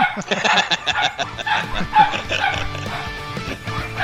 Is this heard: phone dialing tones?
no